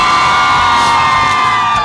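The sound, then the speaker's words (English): A loud crowd at the Today show on Friday, July 28th, 2023 cheers and whoops continuously, a dense wash of high-pitched shouts and yells blending into a steady roar that holds for the whole two seconds. “What an awesome crowd.”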